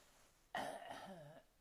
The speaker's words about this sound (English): And I've got a cough.